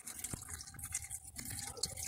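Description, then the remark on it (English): Water leaking from an apartment ceiling drips and splatters steadily, a busy patter of small drops with occasional sharper splashes over a constant watery hiss, with no one talking. “You're gonna tell me you don't know there's water damage in this place? It's raining inside the apartment.”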